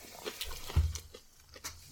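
Someone crunches on hard, brittle dried sesame rice crackers that look like toy chocolate chip cookies, producing a string of sharp, crackly bites and chews at an uneven rhythm, fairly quiet, with no talking.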